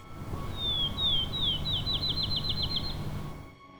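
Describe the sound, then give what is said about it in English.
A field sparrow sings on a warm, sunny spring morning in a meadow, a series of high, clear whistled notes that start slow and speed up into a rapid trill, ringing out over a low steady background hum. “The accelerating notes of the field sparrow.”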